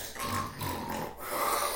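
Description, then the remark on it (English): Someone loudly imitates snoring, three rough, rattling snorts in quick succession, with no speech. “Yo, Freddy Krueger ain't gonna come to your bedroom the way you fucking snore, motherfucker.”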